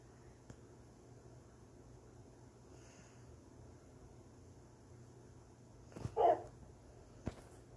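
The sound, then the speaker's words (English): A single short bark from a video game wolf rings out near the end over a low, steady background hum, followed by a faint click; otherwise the scene is quiet. “It's just a wolf, but like, I don't have any rotten flesh I can give to him.”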